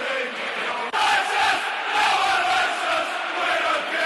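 A stadium crowd roars loudly and steadily for about four seconds during a brawl among players on the field, a dense wall of excited shouting and cheering with no break, surging slightly after a brief dip near the start.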